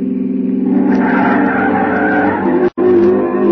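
An old pre-war car skids through a right turn, its tires letting out a loud, sustained squeal over a rough engine drone, broken by a brief sudden cutout before the screech resumes.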